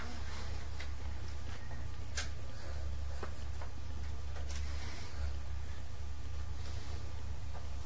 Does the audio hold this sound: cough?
no